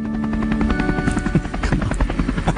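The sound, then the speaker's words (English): A helicopter's rotor thumps in a fast, steady rhythm over a low engine drone, fairly loud and heard in the distance as it arrives at David Bairton's funeral, with no voices. “And not only from the helicopter emerges the man himself, David Bairton, accompanied with a camera crew at his own funeral.”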